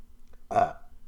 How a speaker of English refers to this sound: I'm already burping.